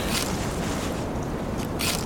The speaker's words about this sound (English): Why is the shutter sound back on?